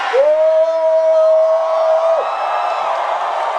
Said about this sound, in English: Everybody shouting.